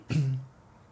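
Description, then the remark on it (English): A single short cough-like throat clear, a lingering race cough from a short track race the night before: a sharp breathy burst settling into a low, rough voiced rumble that fades within half a second, followed by quiet. “Forgive me, race cough from last night.”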